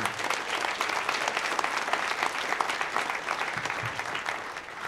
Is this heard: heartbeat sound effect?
no